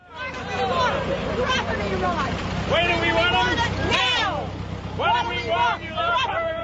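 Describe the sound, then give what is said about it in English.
The engine of Myrtle, the tractor that tried to drive up the steps of Parliament in protest against the fart tax, rumbles steadily at a low pitch while a crowd chatters loudly over it, several voices overlapping; used to promote a Federated Farmers petition. “The sound of Myrtle, the famous tractor that tried to drive up the steps of Parliament in protest against the fart tax.”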